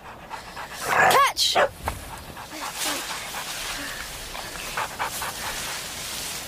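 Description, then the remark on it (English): A dog named Dog pants in quick, breathy bursts, with a short shouted word near the start and a few brief rustles amid the steady rhythmic huffing. “Dog, catch!”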